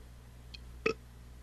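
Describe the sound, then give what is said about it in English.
A single short, abrupt burp pops out of a quiet background with a steady low hum. A faint tick comes just before it, and no one speaks. “Someone burped at me here. Who's burping?”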